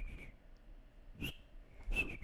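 A person whistles three short, high notes, the last a brief two-tone chirp, with breathy puffs of air around them, fairly quiet against a low background hum.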